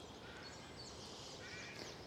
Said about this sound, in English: So these ducks know me and they'll be over in a second. As soon as they spot me, they'll be right over. Here they come.